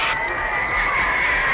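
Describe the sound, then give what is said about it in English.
A live audience at the Regal Theater applauds and cheers to welcome the star of the show in a steady, continuous roar, the clapping and shouts blending into one dense wash of crowd noise that holds at full strength throughout. “how about a nice warm round of applause to welcome Mr. …!”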